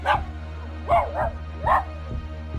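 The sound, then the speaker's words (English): A dog barks frantically, four sharp barks in quick succession, two of them nearly back to back, over a steady low background hum. “Soda Pop isn't sure how the being hurts them, he barks frantically for it to stop”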